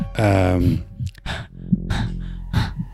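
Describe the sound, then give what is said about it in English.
A strained, voiced gasp gives way to several rough, breathy exhales at uneven intervals, fairly loud, like ragged panting. “But mostly, you can just hear your own panting breath.”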